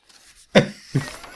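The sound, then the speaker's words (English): Sheets of paper being rustled and shuffled: three crisp, papery bursts, the first loudest, with softer handling noise between them and no voices. “My God, I've got so many pieces of bloody paper.”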